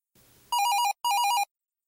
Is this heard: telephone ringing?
yes